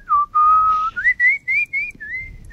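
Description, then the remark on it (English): A person whistles a short tune alone: a long held note, then a string of five or six brighter, slightly higher notes with small slides between them, clear and fairly loud. “I'm not a bad whistler either.”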